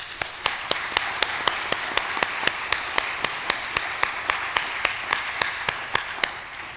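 An audience at an Indigenous Day event applauds steadily, a dense wash of many hands with a crisp, evenly spaced clap cutting through about four times a second. No one speaks, and the applause holds an even level throughout.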